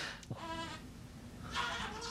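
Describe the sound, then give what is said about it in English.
A baby makes two wavering, goat-like bleats, one short and one longer, moderately loud, over a steady low background hum with no talking. “Do you hear my baby making a billy goat sound in the background, by the way?”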